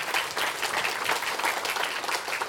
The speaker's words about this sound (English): I was trying to speak before the applause.